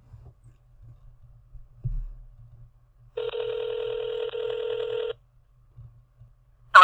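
An outgoing phone call: after a few soft low thumps, a single steady ringback tone buzzes for about two seconds, then a brief burst of sound cuts in at the end.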